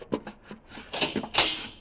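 A door being opened: a few quick clicks and rattles of the latch, then a louder scraping swing that fades out. No one speaks.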